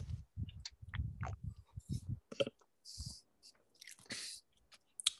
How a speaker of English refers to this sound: Let me take one last sip.